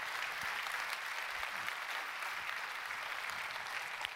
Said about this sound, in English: I don't know who the person is. Let's applaud and thank them for their work, whoever they are.